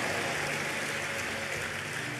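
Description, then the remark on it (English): An audience gives Jesus a big hand clap, clapping in a dense, steady burst of applause that continues at an even, fairly loud level for the whole couple of seconds, with no clear voices standing out. “If you'll be alive, give Jesus a big hand clap.”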